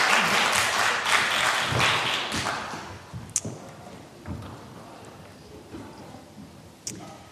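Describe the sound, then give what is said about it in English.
A crowd claps in a dense burst of applause that thins out after a few seconds, leaving scattered claps and a few sharp knocks as it fades. “Round of applause, though.”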